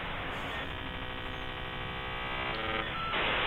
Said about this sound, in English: Familiar crackle of the 56K modem connected to the internet. It buzzes. It's annoying. It's an obnoxious sound. I don't know. Sounds like fun to me.